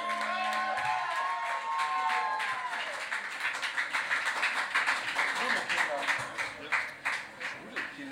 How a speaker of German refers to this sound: Gib mal Applaus, richtig laut!